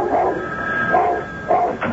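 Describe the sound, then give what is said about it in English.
A dog that barks whenever the phone rings gives several short, pitched barks or yips in quick succession over a faint steady background hum. “Every time the phone rang, he barked and barked and barked till Joan answered it.”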